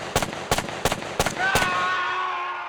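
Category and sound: sound effect, gunfire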